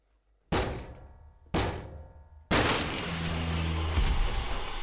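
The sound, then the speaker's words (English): Two heavy thuds land a second apart, then a third blow bursts into a long, loud splintering crash with rattling debris, as a door is battered down and gives way. “You could have broken down our door anytime you wanted to, couldn't you?”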